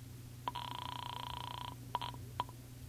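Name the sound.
telephone being dialed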